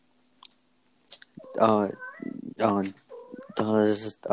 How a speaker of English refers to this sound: Does my listeners want to hear my cat? Look. Look. Say something. Come on. Say something. Say something.